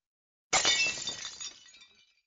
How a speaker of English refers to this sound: You smashed it!